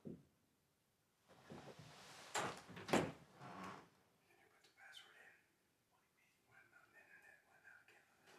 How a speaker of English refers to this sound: Someone knocking at the door.